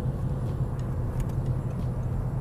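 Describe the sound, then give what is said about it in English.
A loud, steady roar of road noise as a car rushes by very fast on a motorway, passing behind a car travelling at about 70, deep rumbling low end with a faint airy hiss above, no voices. “Car going past, very fast behind me.”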